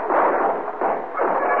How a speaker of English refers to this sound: Every gun in the room opened up on him. The shock knocked him half off the porch, and he lay there.